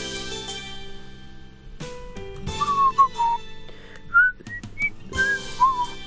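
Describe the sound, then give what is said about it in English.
People whistle a short, wandering tune of several brief notes over a steady background of music with sustained tones. “Nobody wants to hear us whistling.”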